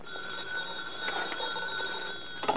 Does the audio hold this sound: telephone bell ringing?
yes